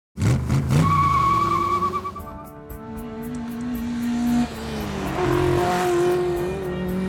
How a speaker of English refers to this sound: A chase ensues. A dashing man drives a beautiful car, racing through the Swiss Alps.